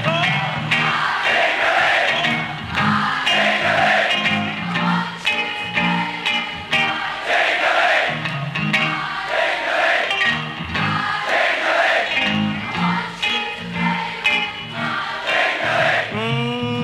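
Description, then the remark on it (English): A large audience sings along loudly and continuously, many voices blending into a steady, melodic roar with rising and falling phrases, punctuated by occasional shouts. “Your parliament out there singing?”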